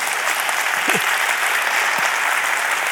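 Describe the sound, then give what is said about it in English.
Steady applause from an audience during a sermon, a dense wash of many hands clapping at even loudness throughout, with no one speaking over it. “You can clap at that.”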